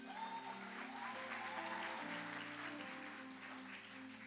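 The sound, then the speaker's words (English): An audience claps in a steady, dense patter of many hands over sustained keyboard chords that shift a couple of times, with no one speaking, fading slightly toward the end. “I thought you would have clapped on that.”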